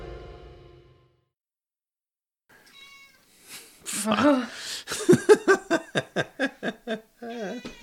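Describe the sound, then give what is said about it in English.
A cat meows, with a drawn-out call followed by a quick, rhythmic run of short, loud meows. A faint murmur of voices comes briefly at the very start. “He literally looked at me and went like, meow.”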